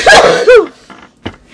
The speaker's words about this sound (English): You coughing? No, I cough.